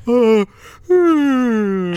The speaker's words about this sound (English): Sorry, I just had to yawn for no reason.